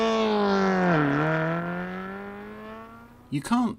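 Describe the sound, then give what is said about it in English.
A car engine is switched on by remote control and settles into a steady, droning hum, its pitch dipping briefly before holding level, followed by a couple of short, sharp chirps at the end. “We're gonna switch it on by remote control.”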